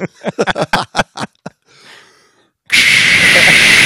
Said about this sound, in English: No. Oh, sorry. That's the loud hiss.